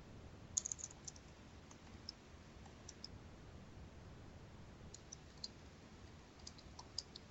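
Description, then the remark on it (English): Soft, irregular keyboard typing, with scattered bursts of light key clicks and brief pauses between them, heard faintly against a steady background hiss with no one speaking. “What are you typing?”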